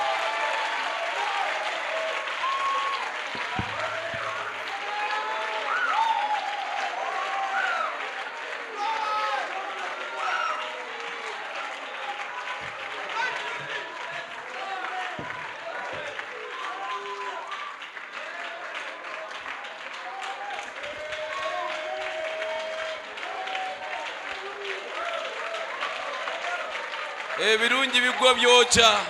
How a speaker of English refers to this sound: Give the Lord Jesus a hand clap of praise. Worship him and thank him.